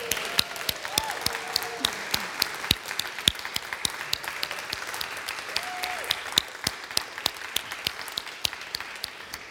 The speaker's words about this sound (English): You know, I want you guys, before I even get started, to give a hand clap for your pastor,